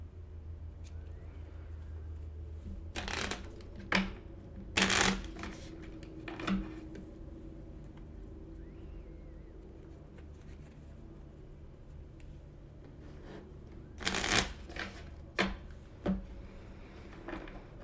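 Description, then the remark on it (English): A deck of tarot cards being shuffled one last time in several short, papery bursts separated by quiet stretches, fairly soft, over a low steady rumble with no one speaking. “Take a moment as I do one last shuffle to really connect in with that intention.”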